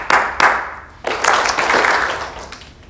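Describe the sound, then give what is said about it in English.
A group claps hands in a follow-the-leader game, one person leading and the others copying: two sharp separate claps followed by a burst of scattered, overlapping clapping that fades out. No one speaks. “So clap your hands.”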